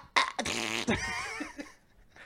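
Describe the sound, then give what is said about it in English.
A voice mimics a fart with a loud, buzzy, sputtering blast lasting about half a second, then trails into a strained, wavering vocal noise that fades out. “Do you guys ever sneeze and fart at the same time, and it sends you for a whirlwind?”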